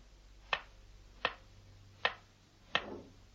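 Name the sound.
kitchen clock ticking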